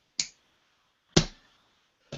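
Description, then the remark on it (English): A coin is flipped, giving three sharp, bright clicks spaced about a second apart, each quick and snappy with a short ringing tail, and no voices. “Let me flip my coin.”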